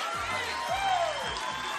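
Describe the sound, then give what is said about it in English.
A crowd claps and cheers in a dense, steady wash of noise, with a few whoops rising above the applause for the whole stretch. “You might as well leave while everybody's clapping so nobody will see you.”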